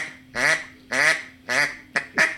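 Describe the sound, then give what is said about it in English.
Five flat, nasal quacks blown on a duck call, three evenly spaced longer ones followed by two quicker clipped notes, loud with no talking. “Flat quack.”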